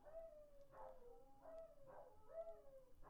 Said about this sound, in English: If you do hear some animals howling. Yeah, I think there's somebody up there agitating the dogs.